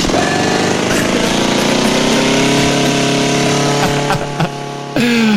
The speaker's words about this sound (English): You go all the way and find a lawnmower clip. I was angry when I saw that clip.